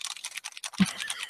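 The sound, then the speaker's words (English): Rapid typing on a computer keyboard, a steady clatter of crisp keystrokes with one heavier thump partway through. No one speaks. “I just got to do this, behind these silly keyboards.”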